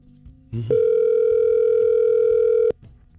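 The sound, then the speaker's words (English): A telephone dial tone as a call is placed to a pharmacy, Parkland Drug: a click, then a steady, loud, low humming tone holding one pitch for about two seconds before cutting off abruptly. “We're going to call a pharmacy for the Senseless Survey and ask some, I guess, drug-related questions.”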